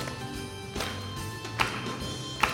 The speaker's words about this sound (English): This is a song for 3-year-olds, everybody, so let's get that energy up. Okay. Can you clap with me?